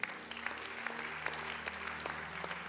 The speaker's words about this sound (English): So what we have at New Wine is the collective effort of all of us. Let's clap for ourselves.